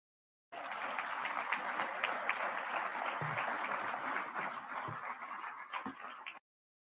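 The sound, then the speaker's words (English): A crowd applauds steadily, many hands clapping in a dense, even roar that holds at a constant loudness for about six seconds before stopping abruptly. “Look at the people applauding.”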